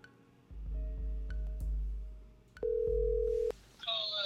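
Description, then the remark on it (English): A loud, steady telephone dial tone sounds for about a second while placing a call to a caller in Florida, preceded by a few soft clicks over a low rumble and followed by a brief chirpy electronic burst. “We're going to call up. Ooh, Florida. I'm going to call them up.”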